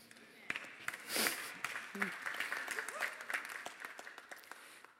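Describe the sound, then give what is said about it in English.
An audience claps steadily for about five seconds, a dense patter of many hands that swells briefly early on and then continues evenly, with faint voices underneath. “I'm thankful you're clapping.”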